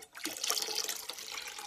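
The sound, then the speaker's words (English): Tap water runs steadily into a bowl, filling it for a simple pepper and soap experiment, a continuous splashing rush with a bright hissy texture, moderately loud, with no voices. “So you're going to fill a bowl with some water.”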